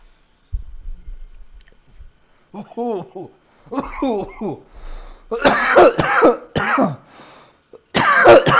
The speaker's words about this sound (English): Whoa. I'm sorry. I'm coughing in the mic so much.